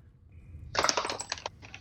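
Dice are rolled to hit for an attack in a tabletop role-playing game, clattering across a table in a quick burst of sharp, bright clicks that bounce and scatter for about a second before settling. Fairly quiet, with no voices.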